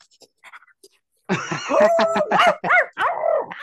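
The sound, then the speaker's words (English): After a near-silent start, a person at an audition loudly imitates a barking dog, with four or five rough, growly barks in quick succession, forceful. “And they're like, she's going crazy, like she's a dog.”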